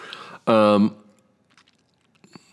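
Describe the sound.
A short voiced hum of satisfaction, then faint crunching as ice is chewed in a few scattered bites, with quiet pauses between them.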